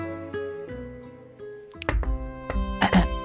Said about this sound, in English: And one day, someone again knocked at old Misery's door early in the morning.